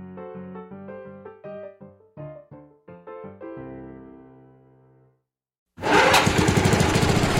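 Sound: lawn mower running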